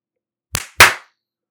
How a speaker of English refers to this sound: And okay, now let's do a clap. Yep, let's do a nice little clap.